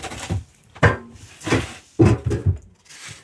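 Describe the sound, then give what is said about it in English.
A wooden chair is brought over and set down, producing several short knocks and scrapes spread over a few seconds, moderately loud, with no talking. “Yeah, I'll bring the chair over.”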